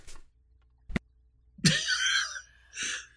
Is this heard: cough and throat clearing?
yes